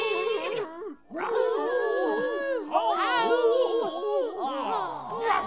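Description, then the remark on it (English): A voice imitates a dog, with wavering, drawn-out howls and short bark-like yelps in a steady, fairly loud run lasting several seconds. “So the big dog called to a black cat to come and help pull up the enormous turnip.”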